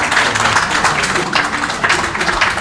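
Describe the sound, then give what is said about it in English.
An audience claps in a steady round of applause for Sean Tucker, a dense, even patter of many hands lasting a few seconds at a fairly loud, constant level. “Round of applause for Sean Tucker, please.”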